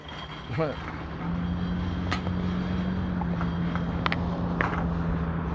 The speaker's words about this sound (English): Fucking crazy fucking Salem, man. You gotta walk out here with a war club. The fucking traffic is crazy